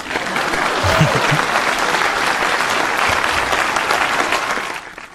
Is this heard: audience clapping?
yes